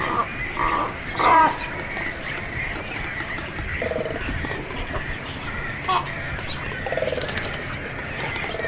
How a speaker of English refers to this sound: Most surprising to me were the croaking conversations of the black, serpent-necked cormorants, which sounded like hogs or demons. Listen.